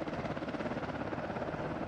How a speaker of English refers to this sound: What I remember about being hauled up into the helicopter is that the view from that height was very similar to what the canyon looks like from the top of a waterfall.